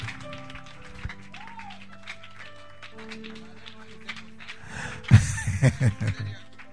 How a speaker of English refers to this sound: Sit down. Clap your hands. Clap your hands.